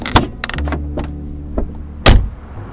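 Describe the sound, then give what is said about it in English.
A car door clunks open with a few rattling clicks and rustles, then a louder thud near the end as the door swings shut, all over a low engine hum. “I got out of the car and walked up to the driver.”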